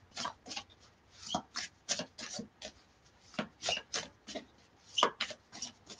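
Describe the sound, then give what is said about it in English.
A deck of tarot cards that don't stick together like glossier cards being shuffled: a steady run of soft, papery swishes and slides in an uneven rhythm, fairly quiet, with no one speaking. “They're a whiz when you when you shuffle them.”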